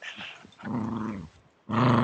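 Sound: dog growling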